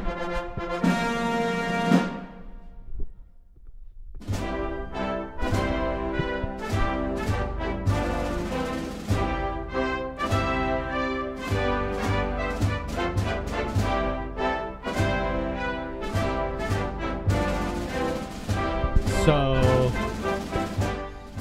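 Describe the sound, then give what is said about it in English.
The ceremonial march "Hail to the Chief" plays loudly from Spotify, with full brass chords and steady drum hits driving the rhythm throughout, and no one talking over it. “Is obviously this is hail to the chief.”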